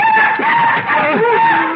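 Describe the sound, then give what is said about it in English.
A loud, wavering cry of a night bird rings out, a shrill drawn-out call with rising and falling pitch that carries through the whole moment with no talking. “Just another night bird”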